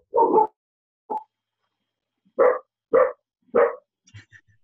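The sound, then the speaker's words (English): A next-door neighbour's dog barks several times in short, separate bursts: one bark, a small yip, then three evenly spaced barks, clear, followed by faint softer sounds. “Someone's got a dog.”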